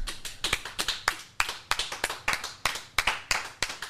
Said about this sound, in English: Oh, there's nothing like a good old round of applause on a Monday, huh?